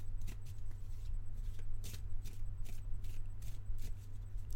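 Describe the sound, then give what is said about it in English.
A deck of picture cards themed on spider-based superheroes being shuffled, a quick series of crisp papery riffles and slaps repeating for several seconds over a low steady hum, with no one talking. “So I'll just give the cards a quick shuffle”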